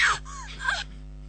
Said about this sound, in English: I thought that was just an arbitrary scream.